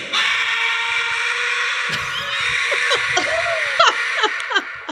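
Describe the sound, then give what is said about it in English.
A man lets out a long, loud, strained scream after lifting weights, holding steady for several seconds, then breaking into ragged bursts and shorter yells near the end, intense. “Watch how he screams at the weights afterwards.”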